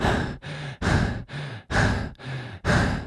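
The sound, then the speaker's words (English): A voice imitates heavy breathing: loud, rhythmic in-and-out breaths alternating about seven times in three seconds, with raspy exhales and a low voiced tone on the inhales. “I made up the heavy breathing, but I'm assuming that's pretty much what he did.”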